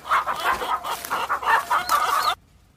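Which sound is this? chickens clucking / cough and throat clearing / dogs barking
chickens clucking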